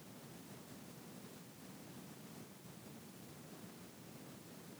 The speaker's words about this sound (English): Listen to the sound of the water falling.